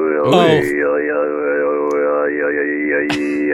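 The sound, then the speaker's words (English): Mongolian throat singing by a man, heard through a phone line with telephone distortion: a steady, buzzing low drone with a whistling overtone melody gliding above it, thin and band-limited, continuous and fairly loud with no talking. “And then this guy decided to show off some of his Mongolian throat singing.”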